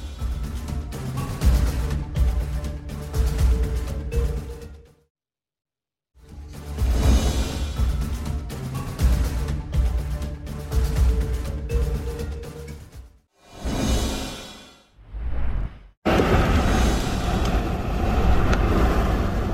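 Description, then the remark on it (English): A violent tornado in Pleasantville, Iowa, filmed by a storm chaser, roars loudly: a dense, rumbling freight-train-like noise broken by a few abrupt cuts and brief silences. No voices are heard. “Oh my God, it's violent! Violent tornado!”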